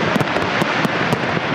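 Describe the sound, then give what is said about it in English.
Fireworks going off in quick succession in Vancouver, a rapid string of sharp bangs and crackling bursts over a constant loud rumble, with no voices. “generations of families coming down to the same spot that they had been in year after year after year to see the fireworks.”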